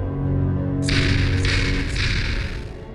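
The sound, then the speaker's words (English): Three sharp knocks of a single knuckle on a door, evenly spaced, each trailing off in a bright ringing echo over a low, steady drone. “The knock came by a single, ominous knuckle.”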